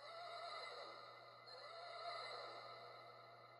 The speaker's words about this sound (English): The horse was up in, I believe, Lila's room at the time, and it just started neighing out of nowhere.